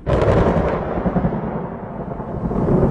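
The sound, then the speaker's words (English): Distant thunder under a morning sky dark with storm clouds rolls across empty plains: a deep, continuous rumble for several seconds, broad and booming at first, then settling into a low, sustained growl with no voices present. “Far in the distance, thunder could be heard rumbling across the empty plains that separated the temple from the Valley of the Dark Lords.”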